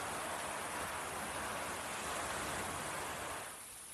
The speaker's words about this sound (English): the waves and the beauty around me right now. Very calming. I don't know if you can hear it.